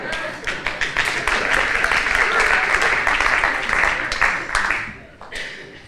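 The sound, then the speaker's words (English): An audience breaks into a round of applause, dense rapid clapping that holds steady for several seconds before thinning out and fading near the end. “Some of us need a round of applause because you're already beyond time.”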